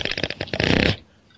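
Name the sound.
fart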